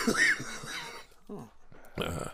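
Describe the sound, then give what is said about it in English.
A harsh, raspy cough rings out, followed by a few smaller, quieter hacking bursts over the next second or so. “What's that cough?”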